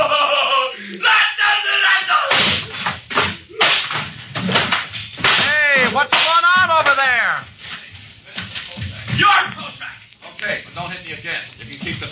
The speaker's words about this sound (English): Don't hit me again. You can keep the $50.